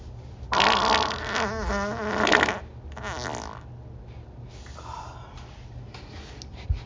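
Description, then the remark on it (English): A long, loud fart sputters with a wavering buzzy pitch for about two seconds, then a shorter second burst follows, trailing off into faint rustling with no one talking. “And I want you to inhale that fucking fart.”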